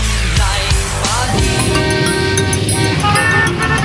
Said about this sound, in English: Traffic. All this traffic. When will it end? Doesn't it seem like there are more cars on the road every day?